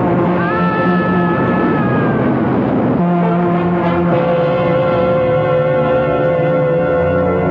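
A loud, sustained train horn blares without pause, its droning chord shifting pitch a couple of times over a steady rumble, with no voices.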